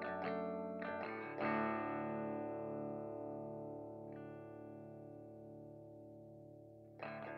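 A heavily distorted electric guitar opens a rock song, striking a few chords before letting one thick, wavering chord ring out for several seconds, then hitting again near the end.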